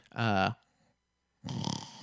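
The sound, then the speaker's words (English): A person mimics snoring while awake: a short voiced, throaty grunt, a brief pause, then a rough, rattling snore-like breath, fairly loud. “Yeah, so for a little example of like awake snoring actually of what awake snoring.”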